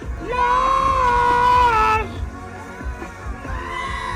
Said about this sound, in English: Yes! Yes! Screaming.